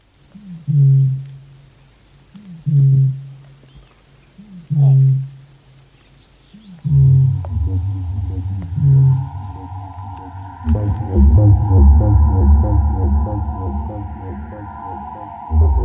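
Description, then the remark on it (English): A lone male bittern at the Hallswell River gives a series of deep, hollow booms, evenly spaced about two seconds apart. Midway, a low droning musical bed swells in beneath the last calls and carries on to the end. “She wonders, too, whether his booms have ever landed him a mate.”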